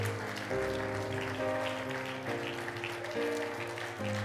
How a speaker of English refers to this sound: One more time, would you clap your hands and praise the Lord tonight?